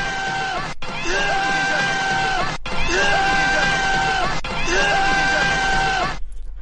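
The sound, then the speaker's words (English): A Stallone yell played as a rating effect repeats four times in quick succession, each a loud, strained, long sustained male bellow with a rising and falling pitch, separated by brief cuts, with no talking over it. “All right, I'm going to also give this five Stallone yells with a sixth Stallone yell for the co-ed shower scene.”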